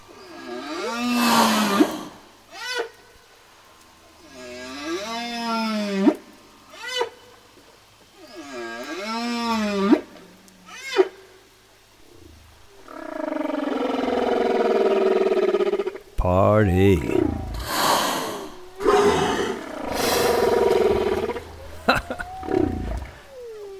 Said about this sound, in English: I wonder what those Australian whales are saying now.